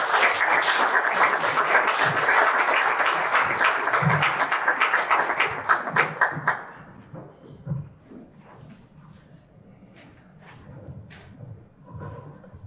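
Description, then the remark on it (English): Loud, dense applause from a crowd for about six seconds, given for author and speaker Dr. Nicole Price, then it tapers off into scattered claps and quiet shuffling with a few faint murmurs. “So would you help me give a round of applause to Dr. Nicole Price.”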